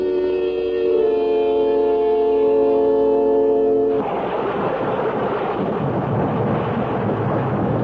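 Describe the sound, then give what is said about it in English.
A sustained, chord-like tone holds for about four seconds, then gives way abruptly to a dense wash of heavy rain with deep, rolling thunder rumbling underneath, steady and loud, with no voices. “When the rain stops, we can go out there.”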